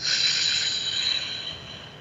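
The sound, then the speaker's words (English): A slow, steady breath pushed out through pursed lips during a guided breathing exercise, after a breath in through the nose: a soft airy hiss lasting about two seconds and gradually tapering off, with no talking. “And then out through your mouth, like through a straw.”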